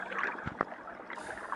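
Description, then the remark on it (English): A rowboat glides through water as it is turned toward a shoreline, with steady sloshing and a couple of distinct oar splashes near the start, then gentle lapping continuing. Moderately quiet, with no voices. “I will turn the boat”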